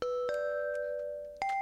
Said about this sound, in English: I'll do these bells real quick.